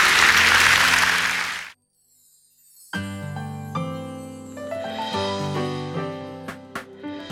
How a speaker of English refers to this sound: Come on, let's give the Lord a clap offering, shall we?